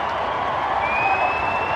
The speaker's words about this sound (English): Listen to the crowd here at Nationals Park.